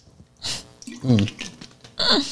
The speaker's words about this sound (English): And it sounds like a sweet sip of water to me.